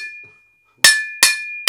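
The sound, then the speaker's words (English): Sharp metallic bangs strike at a steady pace, a diver banging on metal four times inside a wreck to signal a lost dive partner; each a loud, bright clank, with a high ringing tone sustaining between hits after an earlier strike fades out at the start. “Bang on on some metal. Four times.”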